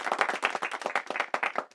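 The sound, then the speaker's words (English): A brief burst of applause from a few people: dense, rapid, overlapping claps at a steady moderate loudness for under two seconds, with no voices. “Insert applause here.”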